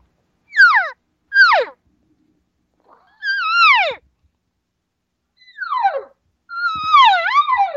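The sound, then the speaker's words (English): Standard social elk cow calls made through a calling tube: five nasal, mewing calls that slide downward in pitch, the first two short, the later ones longer and wavering, with silent gaps between. “here's a cow call. Now, watch the difference between this and no tube, and then I'm going to add the tube.”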